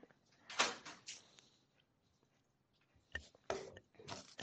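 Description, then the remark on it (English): A door in a hotel swings shut with a few sharp knocks and clatters, then after a brief quiet pause come more metallic clicks and thuds as the door is locked, moderately loud. “I gotta go lock your door.”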